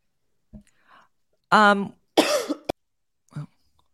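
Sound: coughing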